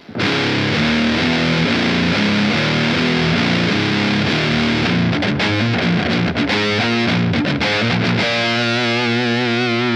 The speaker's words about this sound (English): So here's my guitar through the amp, totally clean. Now I'll plug in the MD2 Mega Distortion. All the knobs are straight up. I'll step on it. Here's what it sounds like.